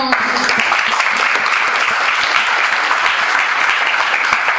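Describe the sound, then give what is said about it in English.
A church audience claps steadily for Jesus during a service, a dense, loud wash of applause from many hands that holds at an even level without fading, with a few faint voices mixed in. “Let's clap for Jesus again.”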